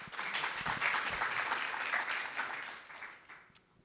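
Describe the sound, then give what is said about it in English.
An audience applauds a panel of women speakers, a dense crackle of many hands that holds at a strong level before gradually thinning and fading out toward the end. “So let's have a round of applause for our women's panel.”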